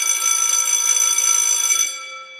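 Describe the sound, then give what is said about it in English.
An old-fashioned school bell, used to signal a sidebar, rings continuously with a bright, metallic clatter of high harmonics, then stops abruptly, leaving a ringing tone that fades away. “Occasionally, we'll be interrupted by the sound of an old-fashioned school bell.”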